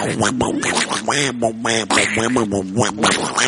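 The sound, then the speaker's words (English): A person does a Donald Duck impression, producing a rapid, raspy, squawking babble of quacky syllables in a continuous stream, fairly loud. “Oh, I can do Donald Duck.”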